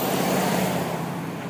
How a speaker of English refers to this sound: Yeah, the bus is coming, so I shall continue this later.